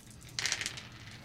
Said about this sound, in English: So you roll all your dice, subtract whichever color is lower out of whichever color is higher.